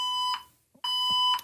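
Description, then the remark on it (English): A building fire alarm going off again blares in two loud, sustained electronic tones separated by a short pause, with a harsh buzzy edge and no voices. “It's a fire alarm in the building.”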